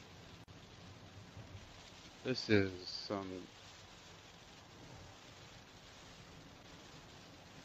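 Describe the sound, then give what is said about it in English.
Steady, dense hiss of heavy rain with low road rumble from inside a vehicle driving on highway 264 west, continuous throughout, with a man speaking briefly over it partway through. “epic rain out here.”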